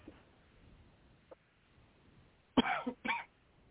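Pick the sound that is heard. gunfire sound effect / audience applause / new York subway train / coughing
coughing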